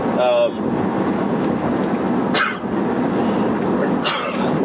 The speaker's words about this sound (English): Sneezing fit right in the middle of the podcast. Wow, the whole podcast is about ghosts and you can't even muster a bless you when I sneeze.